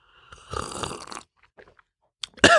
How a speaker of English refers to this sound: I got a cup of coffee in my hand. I'm going to sip it while you sit on what I just said.